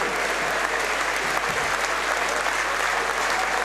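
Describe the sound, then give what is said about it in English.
Steady, dense applause in a large stadium as the players gather in front of the Wrexham Lager stand clapping the fans, with fans clapping too, a continuous wash of claps, loud and sustained throughout. “They're all gathering now in front of the Wrexham Lager stand and clapping the fans.”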